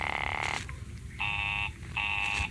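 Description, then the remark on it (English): A telephone busy signal on a call to an office line: a steady, buzzy electronic tone pulsing on and off in even half-second beats, three pulses over a low background rumble. “Oh, it's busy again. Operator, the line is busy.”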